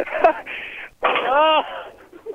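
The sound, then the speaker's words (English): A bull breathing angrily: a few loud, rough, wheezing huffs in quick succession, the longest carrying a low groaning tone before it fades into quieter rustling. “Oh, this one's getting angry. Do you hear it breathing?”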